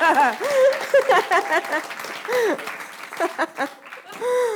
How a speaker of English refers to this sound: Yeah, you could clap for Jesus.